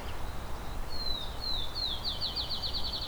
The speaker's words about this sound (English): So I'm just back to the entrance now. Got a field sparrow here, a Baltimore Oriole here that weren't here when I got here. And so that's Beverly Swamp.